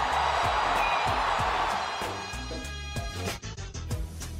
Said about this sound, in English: Swinging a drive toward right center. Back goes Robert. Back near the stands. That ball is gone. A game-winning home run for Chris Morrell. Can you believe it? Listen to this crowd.